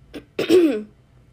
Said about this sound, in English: My voice is like gone. I'm trying to do this podcast, and every time I start, I have to cough.